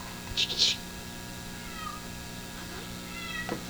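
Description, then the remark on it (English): A cat meows in two short, high-pitched bursts near the start, followed by fainter, drawn-out mews over a steady low background hum and faint murmuring. “Get that cat out of here.”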